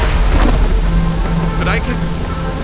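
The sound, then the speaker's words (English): A steady roar of heavy rain fills the scene in the dark, with deep rumbling thunder from lightning strikes rolling underneath and a faint voice breaking through briefly. “But I can only see them in the rain.”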